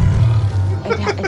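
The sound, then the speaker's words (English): A loud, deep roar from a tiger rumbles low and steady, then breaks into a rougher, higher-pitched growl toward the end, lasting just over a second. “That tiger has night vision goggles.”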